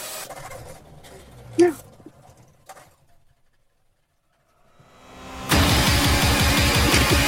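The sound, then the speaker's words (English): A car is turned on: its engine cranks up after a quiet stretch and then runs loud with a steady, throbbing rumble; there are brief murmurs and clatter earlier, before it starts. “Yeah, turn the car on.”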